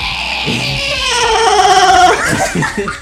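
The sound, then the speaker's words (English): A voice imitates the scream of a creature that crumples and wriggles, a high-pitched roar: one sustained strained cry with bright harmonics that rises slightly and then breaks into shorter, wavering bursts, loud throughout with no other sound. “It makes out a weird kind of high pitched roar.”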